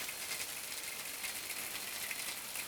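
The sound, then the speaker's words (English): A refrigerator's ultrasonic emission in the first-floor kitchen of a 1930s-style, all-wood bar, heard as a steady, high-pitched hiss with a fine, rapid ticking or ratcheting texture. It holds constant and fairly quiet throughout, with no voices. “Ultrasonically, this fridge leaves a different impression.”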